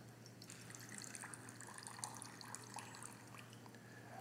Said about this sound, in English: I'll pour the rest of that out so I don't spill it everywhere.